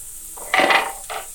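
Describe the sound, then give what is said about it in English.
A sharp wooden clatter as kitchen boards get knocked over, one loud rattling crash followed by a smaller knock, with no voices. “I'm like knocking on my... boards over and stuff.”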